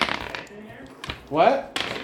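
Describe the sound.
Dice clatter onto a table in a few quick, sharp bursts of clicking, with a short spoken voice breaking in partway through the rolls.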